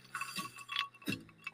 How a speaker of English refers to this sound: In the kitchen, I pour iced tea to the top of a tall glass.